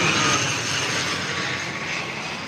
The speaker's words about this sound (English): Oh, you see the plane?